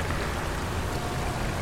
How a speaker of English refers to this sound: Okay, but so it's a dead end with a little waterfall. Really? And a river. There's the falls and a grate with a chain.